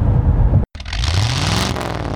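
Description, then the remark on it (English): A sports sedan engine revs hard under acceleration in tour mode, loud, its pitch climbing steadily after a brief cut, with a broad roaring exhaust and no voices. “Now, I like it, but I could see it being a little bit much if you're not really in the mood to hear the engine every time you stomp on the gas so loudly.”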